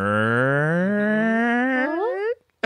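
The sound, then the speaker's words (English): A voice imitates a long fart with a loud, buzzing, continuous tone that starts low and rumbly and slides steadily upward in pitch, ending high before cutting off abruptly. “And it was one of those that started low, like a rumbler, and then went really high at the end, like...”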